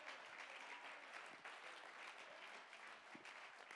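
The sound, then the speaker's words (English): A church audience claps steadily in praise, many hands blending into a dense, continuous wash of applause that holds at an even level throughout, with no voices standing out. “Somebody clap your hands and give him praise.”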